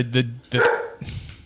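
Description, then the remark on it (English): A dog barks twice in quick succession, fairly loud, followed by a softer, muffled sound as the barking stops. “The speaking of dogs. Yeah.”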